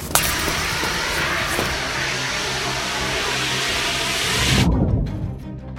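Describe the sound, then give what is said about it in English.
A fire extinguisher is sprayed at a person in one loud, steady, hissing blast for about four and a half seconds, then cuts off abruptly, leaving a low rumble. No one speaks. “Grab that fire extinguisher! No! Yes, Grace. Spray her!”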